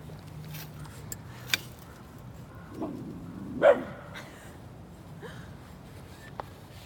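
A dog named Taco gives a few scattered, playful barks a couple of seconds apart, his play bark, the loudest one in the middle, against a quiet background with no one talking.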